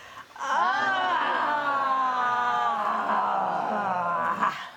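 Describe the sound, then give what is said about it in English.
A long, loud vocal yawn stretches out for several seconds, a sustained open-mouthed moan that swells, holds steady, and trails off with a breathy release. “How about a big old giant fat bear yawn?”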